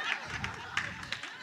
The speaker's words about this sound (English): Why y'all clapping like that? Like I barely made some sense.